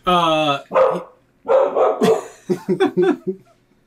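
A dog barks loudly, opening with a drawn-out bark, then a few scattered barks and a quick run of four or five short barks before stopping.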